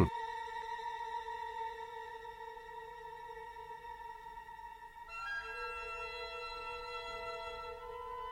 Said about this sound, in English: And so you hear this long, sustained trill that sounds like something is buzzing, something is wrong, and that comes direct from Strauss.